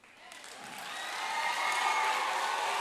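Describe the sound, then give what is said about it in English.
An audience breaks into applause, the clapping swelling steadily from a light patter into a dense, sustained roar of many hands that holds at full strength to the end. “But let me tell you, I'm glad you're agreeing via applause,”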